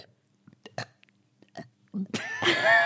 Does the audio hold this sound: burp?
yes